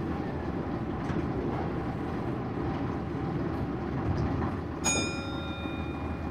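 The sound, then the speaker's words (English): A bus door closes and the bus engine rumbles low and steady as the bus, full of people, drives off, with no voices; a single bright ringing tone of the bus stop bell sounds near the end and fades slowly. “The bus door closes and off they go.”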